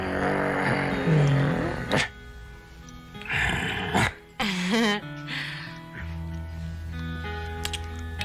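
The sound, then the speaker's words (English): A person imitates a big, deep dog bark, with a few loud, gruff, growling bursts over a faint background hum. “Come on, a big deep bark.”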